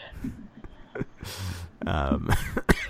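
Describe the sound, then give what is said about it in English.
A loud fit of harsh coughs, several rough bursts in quick succession mixed with throat-clearing and strained vocal noises. “Oh no, the cough is back.”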